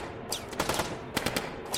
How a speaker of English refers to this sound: Like hard, fast cracks of thunder, gunfire echoed off the walls as fierce flashes of fire erupted from their submachine guns. As the two men sprayed the coach and its human cargo with bullets.